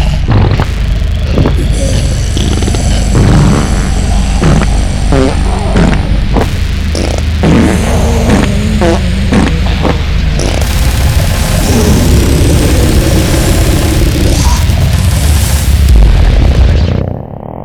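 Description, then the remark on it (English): A slowed-down fart sound stretches out into a long, loud, deep rumble with flapping, sputtering pulses and warbling tones, swelling into a heavy bass-like boom just before it cuts off. “That was just a natural artifact of slowing down a fart sound.”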